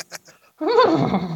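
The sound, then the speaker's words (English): A person imitates a horse whinny with a loud, wavering, nasal vocal sound lasting under a second, following a few quiet breathy sounds. “That did not sound like a horse. That's just the noise … makes when he gets to his end game.”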